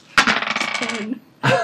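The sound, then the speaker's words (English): Two dice clatter across a hard table for a detection roll in a tabletop role-playing game, a quick rattling tumble that settles after about a second, followed by a second sharp burst of rolling. Fairly loud, with no voices. “As he enters, everyone else can make me detection rolls. Two dice, correct? Two dice.”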